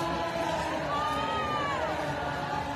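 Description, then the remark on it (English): A large crowd cheers on arrested people as they are led past, calling out in a steady, dense roar, with a few raised voices rising above the noise throughout. “See how the crowd comes to life when they bring them by, they cheer them on.”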